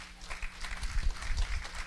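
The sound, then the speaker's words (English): An audience claps for themselves in a steady, dense patter of applause that swells slightly midway and carries on without letup, with no voices standing out. “Give yourselves a big clap.”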